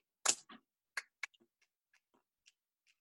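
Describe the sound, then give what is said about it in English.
A countdown clock ticks alone while a final goalkeeper pick is being made, opening with a few loud, sharp clicks and settling into fainter, sparse ticks spaced roughly half a second apart. “20 seconds on the clock.”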